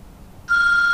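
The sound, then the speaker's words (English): A cell phone on a table rings: the ringtone starts abruptly halfway through, a steady, fairly loud electronic tone with bright overtones that holds to the end over a quiet background. “You see the cell phone on the table? That's the cell phone.”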